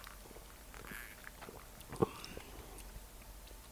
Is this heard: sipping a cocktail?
yes